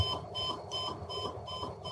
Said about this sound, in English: And so, yeah, we can hear the alarm going off. The alarm clock's going off, and the lights are just doing random things.